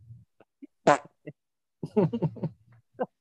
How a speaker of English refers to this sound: Well, that was a really good fart sound effect, whoever did that. Thank you. Just thanks. It wasn't an effect. It was. I could do it again.